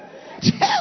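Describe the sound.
A person imitates a sneeze: a short, sharp breathy burst followed by a voiced "choo"-like sound, moderately loud, over a quiet background.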